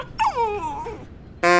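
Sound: dog whimpering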